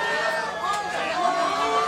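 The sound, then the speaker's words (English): A crowd at an event cheers and shouts together after the power goes out, many overlapping voices forming a steady, loud wash of sound with no pause throughout. “There is a lot of people cheering right now because we lost power.”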